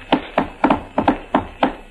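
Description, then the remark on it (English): Muffled knocking on a wall from the next room, around eight hollow raps in an uneven rhythm with a couple of quick double knocks, dull in tone. “Somebody knocked back. Where'd it come from? The next room, I think.”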